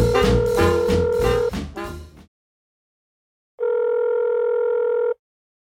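A telephone call tone: a bright, buzzy electronic phrase of shifting pitches trails off, then after a pause of silence a steady, unwavering tone holds for about a second and a half before cutting off.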